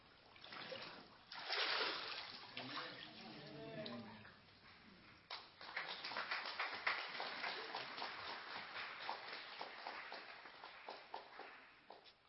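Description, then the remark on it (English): Water splashes and sloshes as a woman is dunked and lifted during a church baptism by immersion, followed by a long stretch of dripping, rippling movement, with brief faint voices mixed in. “it is my joy and privilege to baptize you in the name of the Father, the Son, and the Holy Spirit.”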